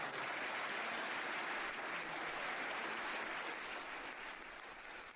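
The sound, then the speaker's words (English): Sustained applause from a sizable audience, a dense wash of clapping that holds steady for several seconds before tapering slightly toward the end, with no voices over it. “While they're not here with us today, please join me in giving these individuals a big round of applause.”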